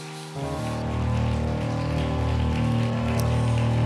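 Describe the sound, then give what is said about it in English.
An audience at a worship service claps together to praise God, a dense, steady wash of many hands that starts abruptly and holds loud for several seconds over sustained low organ-like chords. “Come on, let's clap our hands and give God a shout of praise.”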